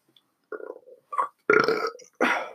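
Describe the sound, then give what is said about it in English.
A loud burp from drinking beer and LaCroix breaks into several croaky guttural bursts with short pauses between them, the last two pushes rougher and stronger. Nobody speaks. “That burp was paused.”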